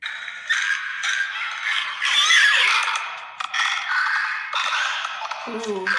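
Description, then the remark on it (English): An eerie creature clicking sound from a TV show: rapid, rasping clicks and rattles, running continuously with shrill squealing tones woven through, fairly loud throughout and ending in a lower, warbling croak. “I started hearing that clicking sound again”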